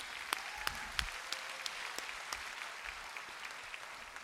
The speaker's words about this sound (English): And I want to I even want to applaud you guys because, again, they're an outgrowth of what you're hosting here.